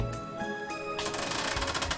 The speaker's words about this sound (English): Okay, squeaky bed sucks. We have to, okay, you know what? I've decided to, we'll take a journey with me. I've decided to find the perfect squeaky bed sex sound effect.